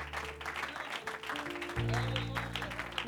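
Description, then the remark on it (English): A Bendale audience claps in a steady, dense patter to welcome a preacher to the pulpit, with sustained low musical chords swelling in beneath the applause partway through. “I want to come to give him a good Bendale welcome to this pulpit.”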